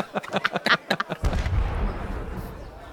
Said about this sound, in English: And so, as the fireworks lighten everyone's spirits, severely burn one or two people, there's not quite the gleeful, you know, homecoming that could have been imagined in a fairy tale.